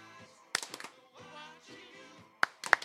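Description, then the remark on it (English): A few sharp hand claps come in two quick bursts, roughly three at a time, separated by a pause. A soft, sustained tonal sound hums underneath. “Get the claps right.”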